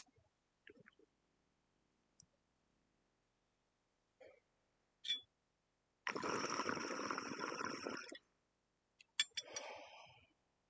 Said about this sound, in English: So if you hear click, click, bubbling and coughing, you already know. I'm going to take this hit.